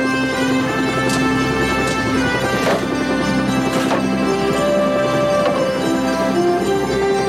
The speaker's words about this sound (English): This is so peaceful. I love the French horns.